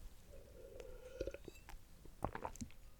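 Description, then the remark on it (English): A quiet sip from a drink, a soft slurp followed by small wet mouth clicks and a faint swallow, with no talking. “hopefully I'm going to shed a bit of light on that after I take a sip of my drink.”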